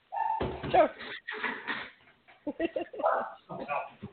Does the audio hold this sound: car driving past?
no